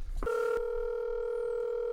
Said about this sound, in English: Now we're going to dial in live. I'm going to try to get him on the line.